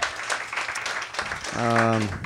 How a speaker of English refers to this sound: Okay, good energy tonight. This applause is amazing.